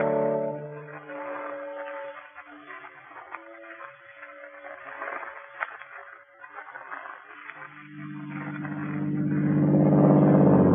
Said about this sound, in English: I drove that Daimler for all she was worth. It was risky driving with my right arm out of action. But I drove on south, downhill into the valley.